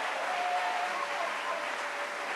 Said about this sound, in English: Clap again, clap again.